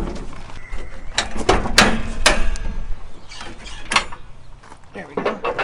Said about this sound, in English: Okay, could we start her up? Yeah. Open the bonnet first, I suppose. Let's have a look.